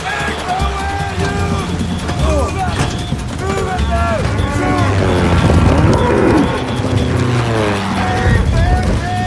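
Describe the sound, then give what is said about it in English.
Several cattle moo, their long bellowing calls overlapping in a dense, busy scene with a low rumble and other voices mixed in throughout. “Hey, the booze on the grind, the cattle down there.”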